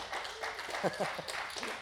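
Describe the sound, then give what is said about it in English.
Audience applause for a preacher finishing five minutes early, a dense wash of many hands clapping at a steady moderate level for a couple of seconds, with voices cheering or calling out over it. “And I finished 5 minutes early, so give me a wonderful round of applause for that.”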